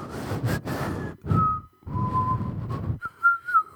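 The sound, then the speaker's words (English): A person whistles a few short, wavering notes, breathy air audible around the tone, and the tune trails off without resolving. “They just peter out. It's like a whistle.”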